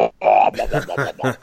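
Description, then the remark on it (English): A voice imitates a loud fart: a long, buzzy, rasping blast followed by several shorter sputtering bursts, croaky and rough, with no other talking. “And she let out one of the loudest farts that I'd ever heard in my life.”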